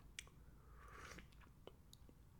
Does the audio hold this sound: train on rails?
no